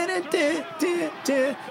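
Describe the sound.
A wrestling crowd cheers wildly, a dense, steady roar of many voices with loud whoops and rising, wavering shouts breaking through every half second or so.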